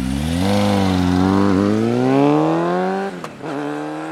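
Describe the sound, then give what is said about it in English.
A motorcycle engine starts up and roars, its pitch climbing steadily as it accelerates and drives away, then dips briefly with a gear change before pulling on. It is loud and continuous, with no voices. “And then he turns around, and he walks out of the room, and we hear his motorcycle start up, and then he drives away.”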